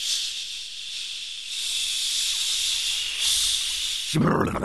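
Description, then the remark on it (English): A voice imitates a hot shower's spray with a long, steady, fairly loud hiss lasting about four seconds, then breaks off into a brief breathy burst. “He washed his face and brushed his teeth, combed his hair, took his hot shower.”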